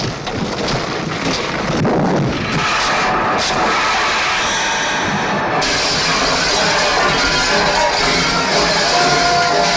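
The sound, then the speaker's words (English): A loud, continuous mechanical roar of a heavy construction truck carrying glass sheets backing down a hill, rumbling and grinding steadily with a sharp rise in hissing noise partway through. No voices. “Truck is backing down from a great distance. It's like a construction truck.”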